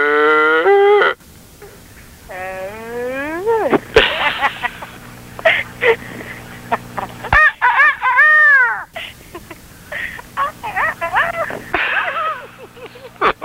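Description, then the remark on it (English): A human voice makes a farm animal noise, imitating a cow's moo several times, drawn-out and wavering, mixed with playful rising cries and crowing-like calls, loud with brief pauses between. “Oh, let's sound like a cow. Moo.”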